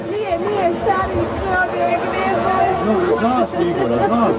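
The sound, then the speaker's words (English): A crowd of people screaming and crying after the shelling of Sarajevo's central market on a Saturday morning during the Bosnian Civil War, many agitated voices overlapping in a loud, continuous clamor, with wavering, rising and falling wails but no clear words. “You can hear people screaming and crying at the outrage.”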